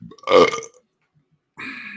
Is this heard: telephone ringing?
no